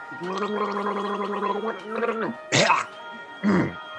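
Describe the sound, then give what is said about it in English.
A voice gargles gasoline held in the mouth, a bubbly, warbling tone for over a second, briefly again, followed by two short wet gulping bursts of swallowing the gas, fairly loud. “I swallowed the gas.”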